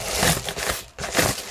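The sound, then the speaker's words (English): A plastic Amazon bag holding a large-ish Christmas gift is pulled open with dry, crackly crinkling in two bursts split by a short pause, the second slightly fuller than the first, with no voices. “I thought I was going to have to pull the scissors out, but this was a lot easier to open.”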